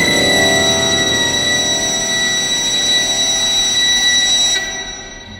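A piercing, shrill whistle holds steady going into the violins of a loud, dense orchestral swell, the opening of the Sweeney Todd score, for about four and a half seconds, then cuts off as the music falls away.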